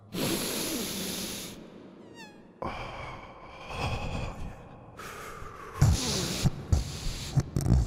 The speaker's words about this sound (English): Okay, now I'm going to sniff. Here we go. 3, 2. Here it comes.